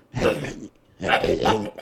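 Two raspy, throaty bursts of an old person's cough, fairly loud, separated by a brief pause; the voiced, drawn-out quality suggests someone imitating the cough.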